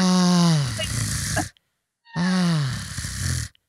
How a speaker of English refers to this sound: But it's like just a rattling in the back of his throat. But it's just a really weird side effect of them like slowing the sound and slowing the motion.